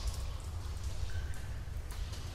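Slow water drips from stalactites in a cave, a couple of faint, sparse plinks falling into a murky pool that fills a rough tunnel, over a low, steady rumble, with a brief thin tone in between.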